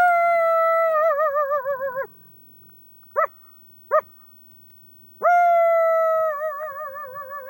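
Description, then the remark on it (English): A man imitates a coyote howl to get captive coyotes in outdoor pens howling: two long, wavering howls separated by a pause with two short yipping calls, with no talking. “… gets them howling. He goes first.”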